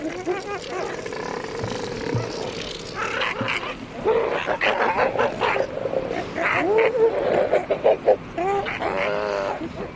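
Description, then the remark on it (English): Southern elephant seals, a tightly packed colony with many newborn pups, bellow and groan at penguins tiptoeing between them on a small island 2,200 km east of the bottom of South America, in a dense overlapping chorus, loud, with harsh guttural calls and higher whining cries over a constant rumble. “southern elephant seals with many newborn pups, all of them really tightly packed together with very little room between them”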